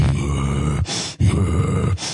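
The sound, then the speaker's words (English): A voice imitates the deep ritual breathing of old men in circles at Bohemian Grove: two long, low, groaning exhales, each followed by a short sharp intake of breath, loud with no other talking. “I saw Faustian rituals of old men doing deep breathing in circles going.”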